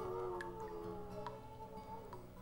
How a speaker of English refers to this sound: Here's the Guinea singing dogs. I'd buy the record.